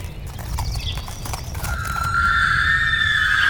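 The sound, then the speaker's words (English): A horse's hooves clop steadily, then a long, high, wavering whinny rises over the hoofbeats and holds through to the end, growing slightly louder. “who raises her on top of the horse.”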